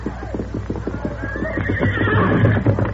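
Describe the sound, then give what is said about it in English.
Silver, the Lone Ranger's horse, whinnies loudly as he is called, his rising call riding over a steady rapid clatter of hooves clip-clopping on hard ground. “Here's Silver. Come, scout.”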